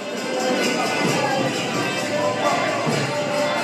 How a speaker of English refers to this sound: Oof, Flatbush Avenue is busy. Crowds of people on their way to a game at the Barclays Centre.